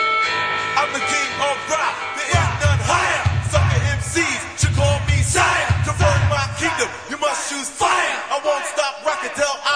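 An angry cat yowls loudly and continuously, its drawn-out, wavering cries rising and falling in pitch, with a low rumbling thump running beneath part of it.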